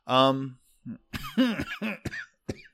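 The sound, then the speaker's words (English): A short run of harsh, loud coughs follows a brief strained vocal sound, the bursts coming in a rapid uneven cluster with tiny gaps between them. “What we're really asking for here is some God, cough I'm so medicine.”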